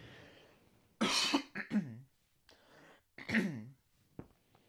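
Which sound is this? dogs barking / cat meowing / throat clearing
throat clearing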